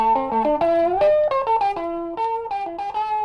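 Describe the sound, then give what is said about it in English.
An electric guitar plays a quick melodic line through a Vox wah-wah pedal, its tone sweeping between bright and mellow as the foot rocks forward and back, sustained and fairly loud with no voices. “Vox's fabulous new wah-wah pedal opens the door to a variety of great new sounds.”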